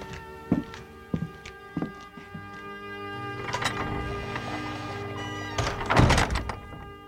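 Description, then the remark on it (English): A few slow footsteps lead up to the Athenium door, which creaks open with a long, drawn-out groan, then swings shut with a solid thump, with no voices. “Without another word, Flana then found her way to the Athenium door.”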